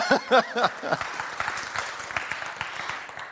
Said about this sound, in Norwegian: Nei, ja, en applaus til han da. Ja.